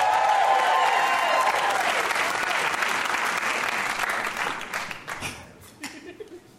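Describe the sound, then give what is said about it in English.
A crowd bursts into loud, sustained applause with some cheering as a new game called Whose Tagline Is It Anyway? is announced, the clapping thinning out toward the end as a voice begins to speak. “Is there a game that if I said it, you guys would not applaud and you'd be sad that it was happening?”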